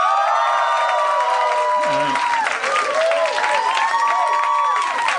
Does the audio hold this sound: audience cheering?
yes